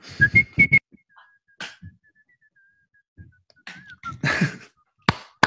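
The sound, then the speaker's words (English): A person whistles the Spokane Chiefs hockey team goal song, a few bright staccato notes followed by a long sustained wavering tone, with breathy bumps and a couple of sharp clicks near the end. “I'm going to whistle a tune for you and tell me if you know.”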